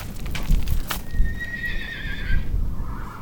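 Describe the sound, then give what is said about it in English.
A horse whinnies with a long, wavering, high-pitched neigh, while hooves clop and shuffle on the ground beneath it amid low outdoor rumble, at a corral at the base of the LaSalle Mountains in southeastern Utah. “Around here, you'll find plenty of horses, but the animal Naomi Wilson is showing me is special”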